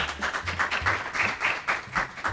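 An audience breaks into steady applause, a dense, crackling wash of many hands clapping at once, holding an even level throughout with no voices over it.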